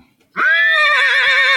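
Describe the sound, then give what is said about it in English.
A person imitates a horse's neigh with a loud, sustained, wavering whinny that starts suddenly after a short silence and holds steady to the end. “Like a horse. Like a horsey. And right here. And neighed.”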